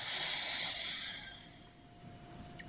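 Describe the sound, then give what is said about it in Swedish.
A slow, soft exhale of breath, airy and hissing, fading out over about a second and a half as a person relaxes after a deep breath in, followed by quiet and a tiny click near the end. No one speaks. “Så ta kanske ett djupt inandetag och bara slappna av när du andas ut.”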